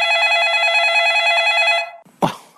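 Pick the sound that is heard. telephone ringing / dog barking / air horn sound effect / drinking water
telephone ringing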